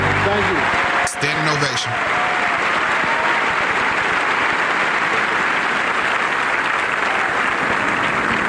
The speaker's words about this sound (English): 1997's Essence Award recipient, Mr. Bill Cosby. Yeah, that's when he had Kids Say the Darndest Things, the TV show. It was very popular. This is him at his peak. Ultimate peak. Yeah, peak. Listen to the applause.